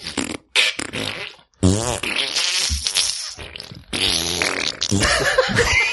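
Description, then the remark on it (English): A series of loud mouth raspberries imitating farts, buzzy and sputtering, repeated in several bursts over a few seconds with brief pauses between them. “Either just the plain old mouth raspberry or the mouth raspberry fart.”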